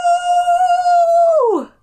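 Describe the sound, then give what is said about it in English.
A person imitates a wolf howl, holding one loud, steady note for over a second before letting it slide downward and trail off. “Okay, do your best wolf howl.”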